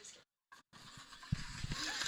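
car

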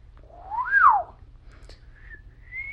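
human whistling

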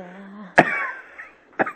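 coughing

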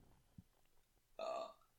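burp

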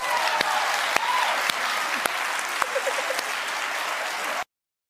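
audience clapping

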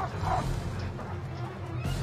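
dogs barking

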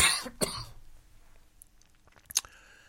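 cough

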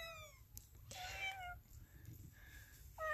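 kitten meowing

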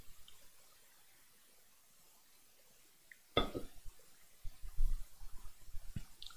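sipping coffee

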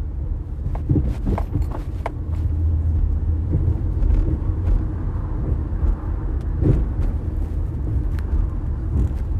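road traffic passing by

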